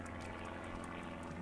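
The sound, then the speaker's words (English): A low-flying, old-style piston-engine helicopter of a 1950s–60s type (not a Robinson) drones steadily overhead, its low engine hum layered with a rough, rhythmic churn that holds constant and fairly loud throughout, with no voices. “And I probably thought it was an airplane because the engine sound is a piston cylinder engine.”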